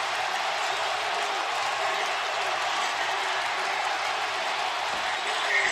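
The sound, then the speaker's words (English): A huge baseball stadium crowd roars and cheers wildly after a home run wins the game for the Oakland Athletics, their 20th consecutive victory, in a dense, continuous wall of noise that stays loud and steady throughout, with no pauses or breaks. “The crowd comes back to insane life.”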